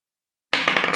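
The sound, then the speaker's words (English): After a moment of silence, a die clatters and rattles across a hard surface and strikes a bell, whose bright metallic ring lingers under a series of quick rattling taps. “Oops, it hit the bell too.”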